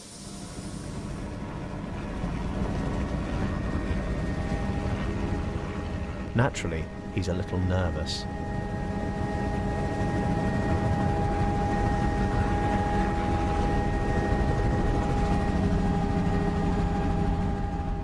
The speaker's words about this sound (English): The helicopter takes them to one of the villages that has been cleared.